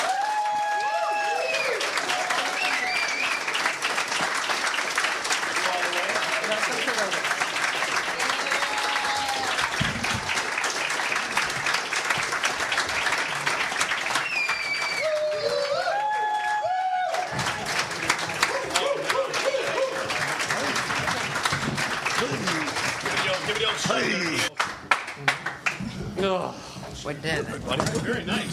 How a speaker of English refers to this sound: Ladies and gentlemen, please give a round of applause to the stars, creators, and writers of Comedy Central's Key and Peele.